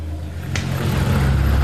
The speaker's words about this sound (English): There goes the last bus.